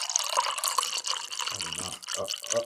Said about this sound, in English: Don't forget to pour something into it. Fuck, a little got on. A little got on the microphone.